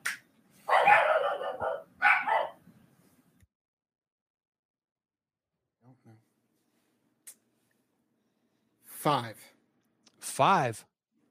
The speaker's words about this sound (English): Sorry, dogs are barking.